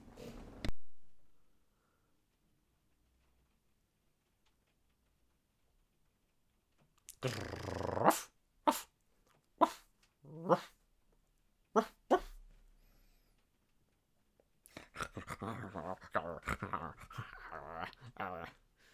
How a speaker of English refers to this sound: Woof. Woof, woof. Yeah, can you hear that? Yeah, of course I can. Fucking so annoying.